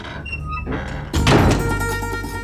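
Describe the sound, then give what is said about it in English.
Heavy doors swing open with a single deep thud about halfway through, followed by a sustained rumbling resonance that slowly fades. A quieter, steady tonal hum plays before the impact. “The doors opened, and Theseus's mouth dropped open when the frightened prisoner he knew as Xenia sauntered in.”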